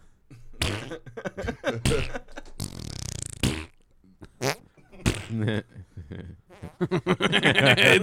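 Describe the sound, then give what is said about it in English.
A voice imitates farts several times, blowing wet, buzzy raspberry bursts, mixed with laughter and quick chatter between the blasts. “We did 15 minutes on fart sound.”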